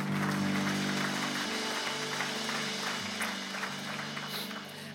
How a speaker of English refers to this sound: And somebody say praise be, and come on somebody, give the Lord a round of applause for His goodness and favor.